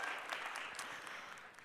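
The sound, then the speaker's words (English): An audience claps together for a man, a dense, steady patter of many hands, fairly soft and continuous throughout, with no one speaking over it. “Yeah, we can clap for him.”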